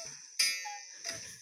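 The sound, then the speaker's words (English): A cuckoo clock tone set as a phone alarm sounds twice, about half a second apart. Each bright, ringing note lingers and fades. The sound is fairly quiet, with no one talking. “Only now it's I've replaced the with a cuckoo clock. Let me play it for you.”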